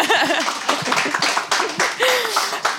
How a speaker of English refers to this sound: Thank you both very much for joining us and for sharing your stories. Yes, do clap. That's good.